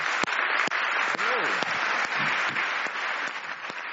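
Sustained audience applause at an evening event as a guest is invited up, a dense, steady wash of clapping with a few sharper individual claps standing out, while faint voices and cheers rise briefly underneath.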